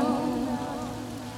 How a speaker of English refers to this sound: Summer rain is falling down.